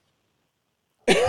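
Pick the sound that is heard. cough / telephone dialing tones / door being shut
cough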